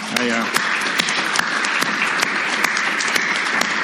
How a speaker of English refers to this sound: It's just a way to get us clapping early on, I think.